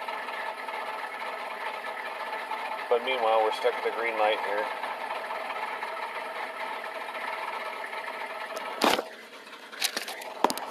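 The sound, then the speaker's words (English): A car engine idles with a steady rumbling hum and a faint rattle from something loose in the engine; a man speaks briefly over it, and a sharp clunk sounds near the end. “Something, there's something loose in his engine.”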